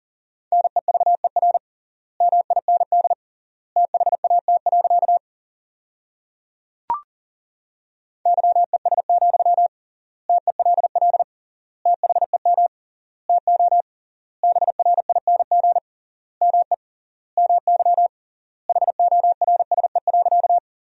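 Rapid Morse code practice at 40 words per minute with triple word spacing, sending sentences built from the top 500 words, in a single steady mid-pitched beep in quick bursts of dots and dashes with pauses between words, plus one brief click partway through. No voices.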